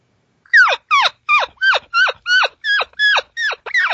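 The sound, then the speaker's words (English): An imitated calf distress call, sped up to signal a calf that needs assistance: about nine quick, loud bleats in a steady run, each one a harmonic cry that drops sharply in pitch. There is no talking. “You know, anything like that, you know, when it gets rapid, it shows, needs assistance, needs help.”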